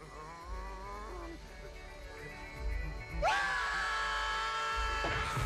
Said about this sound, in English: What were they screaming for?